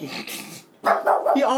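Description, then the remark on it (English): A dog barks loudly at the garbage, a quick series of sharp, harmonic barks with a brief pause between bursts. “Why are you barking at the garbage?”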